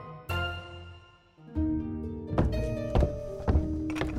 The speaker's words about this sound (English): then stormed out a door at the back of the room. As the door banged shut,